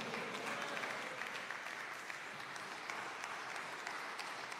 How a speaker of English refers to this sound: Let us give student minister Ismail Muhammad a well-deserved round of applause.